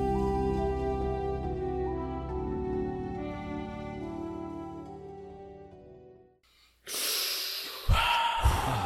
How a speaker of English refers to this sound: Breathe in, breathe out, breathe in, breathe out. Sorry.